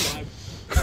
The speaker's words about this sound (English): Oh. Who was that? That is an aggressive sniff. That's a recorded sniff. Oh, my. That is an X-rated sniff. That should come with a warning.